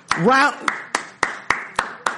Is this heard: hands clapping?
yes